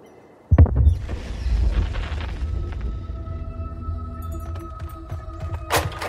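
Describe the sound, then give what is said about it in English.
Gunshots from hunters up on a hill near a cell phone tower: a sudden deep, distant boom, followed by several seconds of low rolling rumble and echo, with a sharper bang near the end; no one speaks. “Gunshots. I think up near the cell phone tower, up on the hill.”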